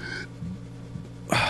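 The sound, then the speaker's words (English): Heavy, nervous breathing: a sharp, gasping breath at the start, a brief lull, then another loud breath rushing in at the end. “I'm fine. I'm breathing.”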